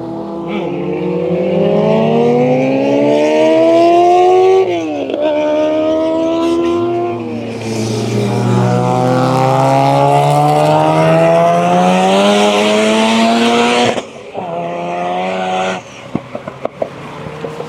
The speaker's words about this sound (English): Ferrari going past and its exhaust was literally spewing flames. It stinks.